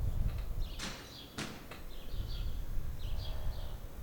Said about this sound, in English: Morning, birds.